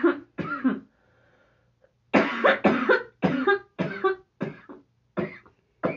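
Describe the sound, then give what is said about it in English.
A fit of harsh, repeated coughing: two quick coughs, a short pause, then a run of about eight more loud, raspy coughs in uneven succession. No talking. “You just keep coughing?”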